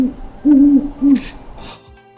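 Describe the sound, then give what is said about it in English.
A person imitates an owl's hoot: a short lead-in note, then a long, low hollow hoot and a shorter one, followed by a couple of soft breathy rushes. “What do your hoots sound like?”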